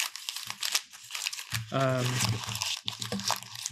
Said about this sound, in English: And I want you to crumple it up.